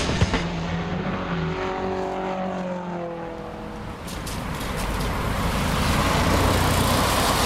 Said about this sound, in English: The sound of cars with internal combustion engines, heathens, driving into Renfrewshire Recycling Centre, where we are doing our penultimate top-up.